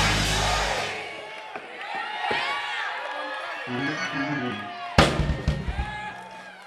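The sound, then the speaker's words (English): An audience screams and cheers in a loud, sustained roar of overlapping voices, answering a call to scream 'glory stories', with a sharp burst of shouting and clapping-like hits swelling up near the end. “Somebody scream glory stories.”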